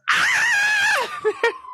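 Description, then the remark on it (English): A loud police siren passing outside wails at a steady high pitch for about a second, then slides down, followed by two short yelps and a fading tone. “Me and you live in like siren like fucking like hubs. Cause there's always like police and fire trucks.”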